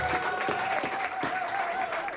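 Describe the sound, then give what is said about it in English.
Steady applause from an audience at a comedy show, a dense wash of clapping at even loudness throughout, with a faint high tone running beneath it and no voices rising above the clapping. “And then I said, round of applause, everybody.”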